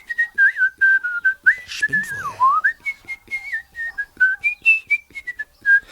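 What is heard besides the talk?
man whistling a melody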